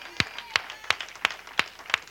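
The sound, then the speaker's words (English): An audience claps hands together in praise, six sharp, evenly spaced claps in a steady rhythm, fairly loud against a low murmur of room noise. “If you are, give God a hand clap praise.”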